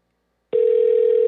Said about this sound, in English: Looks like his, his landline's actually ringing. The other day it wasn't ringing. It was just a really fast, busy signal.